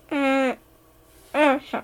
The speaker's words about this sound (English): All right, I don't think we can do a whole podcast episode with just cat noises.